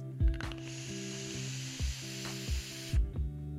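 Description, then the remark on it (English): Duchess vape coils fire with a steady, soft sizzling hiss for about three seconds, carrying only a faint crackle, over a low droning hum and a few dull thumps. No one speaks. “I wish I got a little bit more crackle from these Duchess coils, but, you know, what are you going to do?”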